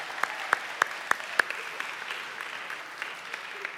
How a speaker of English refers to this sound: We are glad your kids are here. Adults, can we just clap for the kids tonight and say welcome?